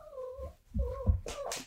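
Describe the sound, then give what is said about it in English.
A cat lets out two drawn-out, wavering meows, with a low rumble underneath, ending in a short breathy, hissing burst. No one speaks. “Oh, I was like, is that the cat?”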